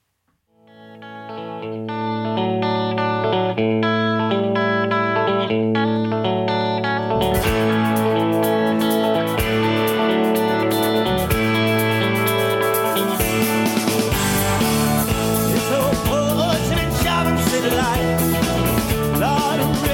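A rock cover song opens with sustained, effects-heavy guitar chords, then drums and full distorted band crash in about seven seconds later and drive on loudly to the end.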